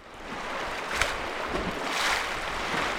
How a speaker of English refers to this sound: sitting on the yellow rubber edge of a huge inflatable raft as the boat splashes through the Yampa River. We're flying along.